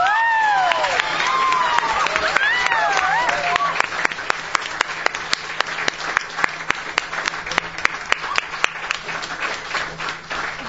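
A crowd bursts into loud applause mixed with whoops and cheers, then the clapping thins out into scattered, distinct claps as it winds down.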